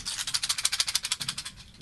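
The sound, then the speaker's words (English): A voice imitates a rattlesnake's rattle with a fast, steady run of about twenty hissy, crackling pulses over two seconds, bright and papery, heard alone with no talking. “You had it as a rattlesnake at the beginning.”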